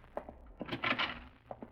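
A few sharp clicks and thunks from a latch, then a brief rushing scrape as Senor Dollar pulls his door open to the police, ending with a couple of soft knocks.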